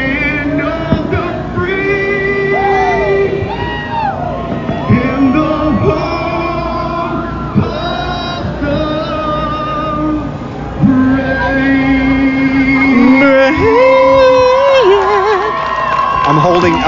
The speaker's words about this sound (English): Oh no, everybody's singing. Everybody, come on.